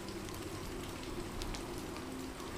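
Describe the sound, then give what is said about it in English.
Heavy rain pours down around a villa in a steady, dense hiss, with scattered drops pattering on a surface throughout. The downpour sounds continuous, with no voices. “The rain comes down harder as the wind whips around the villa.”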